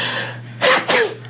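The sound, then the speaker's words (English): A person performs a fake sneeze, a loud two-part burst like a quick inhale-then-choo, sharp and breathy, over a steady low background hum with no talking. “I perfected my fake sneeze because I used to be out of breath walking up the flight of stairs in Lloyd.”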